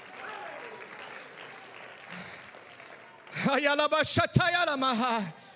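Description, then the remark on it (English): A crowd claps their hands unto the Lord in worship, a steady, dense wash of hands, then a loud, strained voice rises over the clapping and carries on through the last couple of seconds. “Oh, clap your hands unto the Lord right now, all ye people.”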